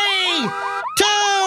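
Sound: car alarm sounding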